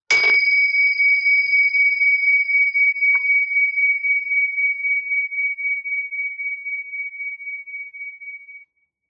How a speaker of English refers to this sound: So, listening to the sound of the bells.